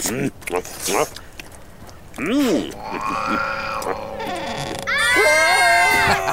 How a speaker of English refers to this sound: That's right. Scream. No one is listening in the middle of the woods.